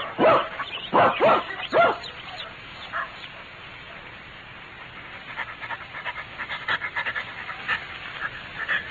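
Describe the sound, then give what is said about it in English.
A dog named Toby lets out a quick cluster of loud barks, then falls into steady, rhythmic panting that continues softly for several seconds, with no voices. “Leave the dog here and come up.”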